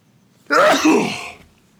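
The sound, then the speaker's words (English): A single loud sneeze, a sharp breathy burst that trails off over about a second, with quiet room tone before and after. “Oh, that really just, that sneeze just hung at the top there for a minute before it really came out.”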